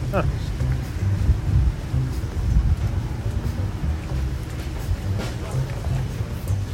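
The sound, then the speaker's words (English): A steady low rumble like a large boat's engine idling by the levee near Jackson Square, with gusts of wind buffeting the microphone and faint voices murmuring underneath. “So the boat's back for the night, I think.”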